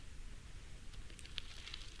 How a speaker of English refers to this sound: I love the sound of rustling pages.